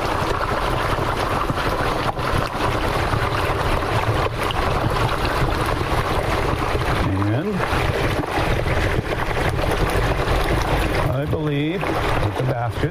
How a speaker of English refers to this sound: I'm going to bring it over to the fryer and start dropping it very slowly into the oil. And you do this very slowly because, as you can hear, that oil is bubbling.